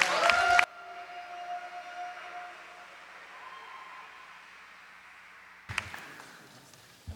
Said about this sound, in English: There are so many more of you in this room for that kind of clap.